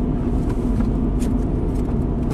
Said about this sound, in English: Yeah, we're just in a loaner car at the moment. Yeah. In a weed whacker. Yeah. I don't even know what kind of car this is. This is a Ford Escape. Is it? I think it's like a 2006.